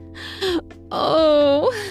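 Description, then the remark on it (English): A short, sharp voiced gasp, then a longer drawn-out breathy vocalization that rises in pitch at the end. It is fairly loud, with no words spoken. “I gasp as he aggressively sucks my tit”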